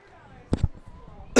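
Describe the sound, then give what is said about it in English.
A sudden, sharp sneeze bursts out in a quick double puff, followed moments later by another noisy burst, over a low murmur of background voices. “Bless you.”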